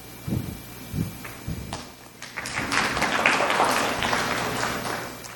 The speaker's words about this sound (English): Yeah, you can clap.